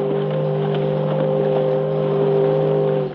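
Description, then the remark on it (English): A boat engine in a channel drones steadily with a low, humming pitch and a buzzy, slightly rough texture, holding fairly loud and even throughout, with no voices. “The captain can't hear me unless I get on board.”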